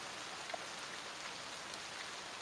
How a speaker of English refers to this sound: Judging by a storm like this, it could be hours. Maybe days.